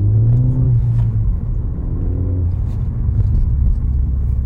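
Steady car engine hum and road rumble from inside a moving vehicle, loud and continuous, with the engine pitch shifting slightly as it drives. No one speaks.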